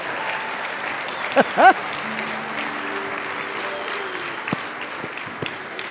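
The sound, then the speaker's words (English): An audience claps steadily in a sustained round of applause for children who led worship, with a couple of brief high whoops and cheers rising above the dense clapping early on. “Can we give our kids one more round of applause for leading us in worship today?”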